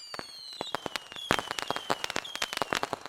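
Fireworks at a 4th of July fireworks show crackle and pop in rapid, irregular bursts, with thin whistling streaks threading through a dense sizzling barrage that sounds steady throughout.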